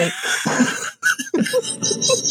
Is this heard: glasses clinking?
no